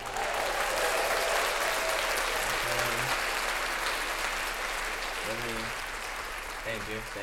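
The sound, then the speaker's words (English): Steady, dense applause from a crowd, many hands clapping in a loud continuous wash that fades slightly toward the end, with a few brief voices calling out over it, clapping to mark an inaugural live show. “We got to clap that up.”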